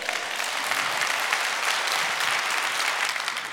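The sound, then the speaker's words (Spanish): Sustained applause from a crowd fills the whole stretch, a dense, steady wash of clapping at even loudness with no pauses or voices standing out. “Dale un aplauso.”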